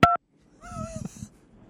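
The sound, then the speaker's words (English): A single short, loud phone keypad tone beeps right at the start, followed by a quieter warbling electronic tone over muffled low rumbling noise. “Press one for yes or press two for no.”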